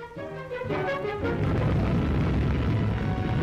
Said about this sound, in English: The 250th nuclear weapon explosion in history carries France a step further towards General de Gaulle's dream of national glory restored.